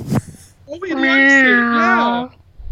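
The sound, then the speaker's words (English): A single drawn-out, fairly loud meow from Pluto, an all-black cat, rises and then trails down, lasting well over a second. It is preceded by a short click, and there is no other sound around it. “He's a kitty cat.”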